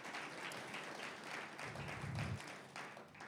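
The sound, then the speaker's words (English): An audience claps together in a steady, sustained wash of applause lasting a few seconds, dense overlapping hand claps with a low rumble swelling briefly near the end. “So I don't know if you normally do this, but why don't we give us in Christ a clap for all that giving and obeying the Lord?”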